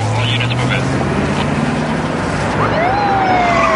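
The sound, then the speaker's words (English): Several police cars roar in to search for someone, tires screeching, over a dense rumble of engines, with a siren wail climbing in partway through, loud amid the busy, noisy scene. “Okay, all the cop cars come storming in to search for him. Tires are always screeching.”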